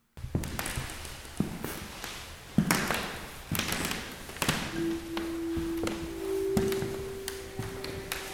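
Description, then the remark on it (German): Footsteps on a creaking parquet floor in a museum room with old heavy furniture. Steady thuds and taps come one after another, and a drawn-out wooden creak groans under the later steps. No one speaks. “Ein mächtiger Kamin, alte schwere Möbel und ein wunderschönes knarzendes Parkett machen es urig und gemütlich.”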